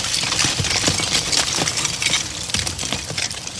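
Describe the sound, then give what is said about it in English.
Lava flowing, a dense, steady roar filled with sharp crackles and glassy clinks, like heaps of brittle fragments tumbling and breaking, loud and continuous with no talking. “But most people, myself included, have never heard lava flowing. This is what that sounds like.”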